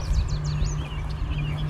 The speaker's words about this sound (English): Yellow warblers.